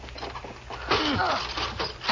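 A train seat is dragged and swiveled around, a harsh scraping rush with squealing creaks rising and falling, loud and continuous after a quieter mechanical rumble at the start.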